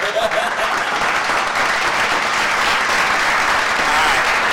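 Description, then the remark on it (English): Steady, continuous hand clapping fills the whole stretch, brisk and fairly loud, like a small group applauding, with a faint murmur of voices underneath. “Let me clap for mama for that.”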